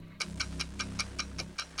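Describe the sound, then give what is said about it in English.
A 40-second game clock timer in a word quiz ticks in a brisk, even rhythm, about five crisp, bright clicks per second, over a steady low hum with no talking. “40 seconds are on the clock,”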